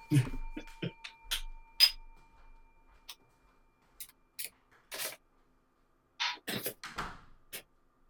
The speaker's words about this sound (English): Closing the door. I'll be back too.